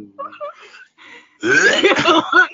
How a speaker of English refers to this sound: ooh, that was kind of an extra spicy burp. Kind of sound like you threw up.